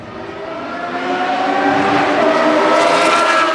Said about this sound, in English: Formula One racing roared into Austin, Texas this weekend.